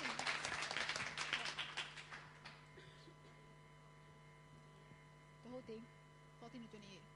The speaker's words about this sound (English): Just give a loudest applause. Yeah.